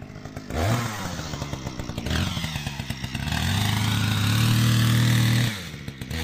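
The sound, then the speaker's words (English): A chainsaw roars, its engine revving up and dropping back in waves as it cuts through ancient, low-density sediment rock, with a gritty grinding clatter throughout before easing off near the end. “chainsaw, we wouldn't have found the really nice fossils that we've found in the last few years.”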